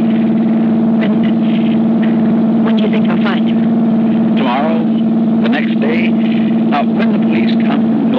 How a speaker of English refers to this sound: What's wrong? I don't know. The motor's missing. We're stopping.